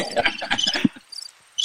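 Short, high-pitched cricket chirps played as a sound effect from a soundboard trill in brief repeated bursts, faint at first beneath a stretch of talking voices, then clearer on their own near the end.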